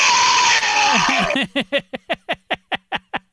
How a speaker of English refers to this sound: By the way, the best sound of an evil monster baby, where it's just over and over again, you hear an echoing.